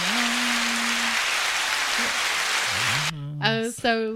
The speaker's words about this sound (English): I think that needs some applause.